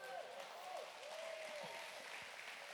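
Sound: audience clapping hands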